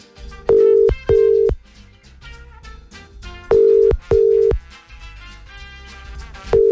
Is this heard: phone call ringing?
yes